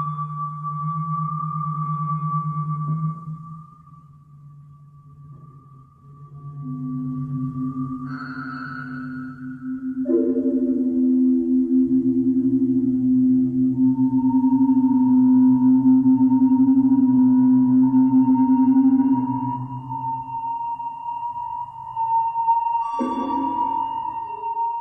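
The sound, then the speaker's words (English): Early electronic music: sustained pure sine-like tones glide and hold at shifting pitches, a low drone beneath a higher whistling line, with sudden tone changes and brief bursts, no voices. “he used her glass bead game as one of the examples in his lectures on early electronic compositions”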